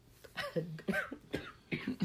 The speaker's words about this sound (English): It's okay. Cough it out. Yeah, she's been a little under the weather this weekend.